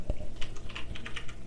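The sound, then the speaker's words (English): Quick, uneven clicks of typing the website name Cracked Streams on a computer keyboard, a dozen or so sharp keystrokes tapping along at a steady level with no voices over them. “I don't know if I spelled it right.”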